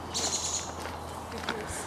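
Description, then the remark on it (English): Birds chirp and call busily outdoors, a quick burst of high twittering followed by a few scattered calls, fairly faint over a steady low background hum. “Birds are going crazy over there.”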